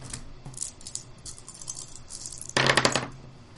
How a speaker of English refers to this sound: All right, roll your dice.